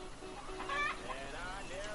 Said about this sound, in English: Well, we got these real cute bar rock chickens here. Yeah, I see it. Got them nice, long-legged Rhode Island Red chicken.